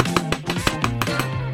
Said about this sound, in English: Tool call. Hammer.